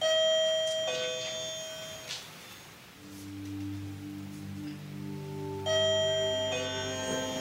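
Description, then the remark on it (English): A wireless doorbell from a hardware store, set up in a courtroom and operated by the speaker, plays a melodic electronic chime of several sustained notes, stepping between higher and lower tones, then starts again. It sounds clear, with no voices. “I actually went to a hardware store and I was able to obtain a wireless doorbell that I brought into the courtroom before anyone arrived that morning of the closing and positioned it in the courtroom so that I could operate it at the appropriate time”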